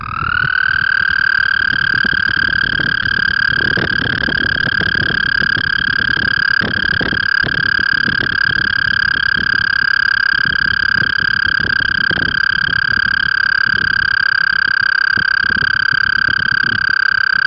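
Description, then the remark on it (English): A single long, steady high-pitched musical trill of an American toad holds unbroken for the whole stretch, loud, with soft rustling background noise beneath it and no voices. “Their call is a long, high-pitched musical trill that can last for up to 30 seconds.”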